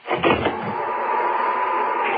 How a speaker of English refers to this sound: I shut the door.